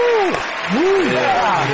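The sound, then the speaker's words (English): Elk hunting coaches clap steadily for the Elk Bros Adventure Class of 2022, the dense patter of applause filling the whole moment, with voices calling and whooping over it. “Hey, the coaches are applauding you boys, man.”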